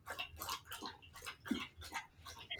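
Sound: dog lapping drinking water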